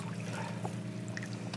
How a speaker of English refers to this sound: A pump sucks water out of the pond and empties it into a natural wash.